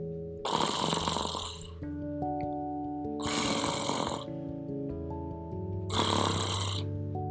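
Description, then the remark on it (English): A man, one of two strangers sleeping in a house, snores loudly and steadily in his sleep, three long rasping breaths about three seconds apart, over a soft musical background with no one speaking. “1 hour passed, 2 hours passed, and one of them began to snore.”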